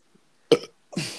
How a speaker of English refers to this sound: That burp wasn't meant to be rude.